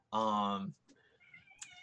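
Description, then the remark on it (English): A cat gives one loud, drawn-out, complaining meow while being held and cradled, lasting about half a second, followed by softer, fainter tonal sounds in the background. “Cat is just not happy right now.”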